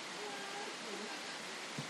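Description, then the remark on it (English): Pouring rain at a Tuffley Rovers football match makes a dense, even hiss that fills the whole clip without a break, with faint murmuring voices barely audible underneath. “Potentially going to get one here in the pouring rain.”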